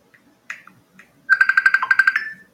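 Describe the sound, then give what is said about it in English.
An electronic outgoing phone call tone as someone calls a friend: a few short soft blips, then a loud, rapidly pulsing ring lasting about a second, clear with no one talking. “called a buddy”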